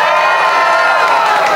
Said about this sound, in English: I want to ask the audience, by a show of screams, because I can't see any of you, how many of you enter on the left tunnel and how many on the right tunnel? So scream if you're a left tunnel person.